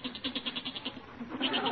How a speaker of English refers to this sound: No, that's not my father. That's the goat. He's getting restless down in the cellar.